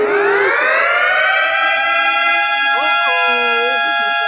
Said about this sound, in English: That's an alarm.